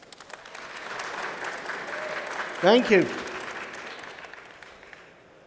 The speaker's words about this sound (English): here we are at Oceanology International 2022 in the conference theatre. We normally make a podcast in a studio with a few guests, but here we are with a live audience. So now, can you help me? Can you all clap so the listener knows we're really live?